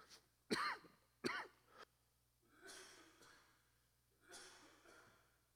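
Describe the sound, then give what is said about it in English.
Two sharp coughs in quick succession, followed by a couple of rougher, breathy throat-clearing rasps, with no talking over them, from a speaker who strained his throat singing loudly. “I'm going to blame that cough on Nathaniel.”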